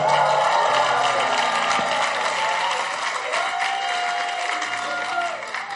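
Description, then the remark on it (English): A church audience at a Sunday Founders Day service applauds after a prayer with sustained, dense hand clapping, steady and fairly loud throughout, with a few faint tonal sounds and murmurs underneath. “Take your seat with a mighty hand clap.”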